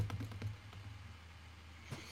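A handful of soft, quick keyboard clicks tap out in the first half-second, then a pause before one more isolated keystroke, all over a steady low hum with no talking.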